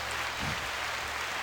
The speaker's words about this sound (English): Applause.